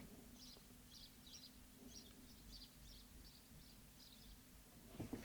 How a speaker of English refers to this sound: So the slanted roof ends just before our door, and when we open the door, the sparrows are there, loads of them. I don't know how many live up there, but they breed in there, and we love it. It's so exciting. Listen to them.